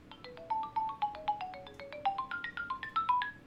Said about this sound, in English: It's a GameCube ringtone, which I went in to the files of the website and downloaded it so I can use it as my new ringtone.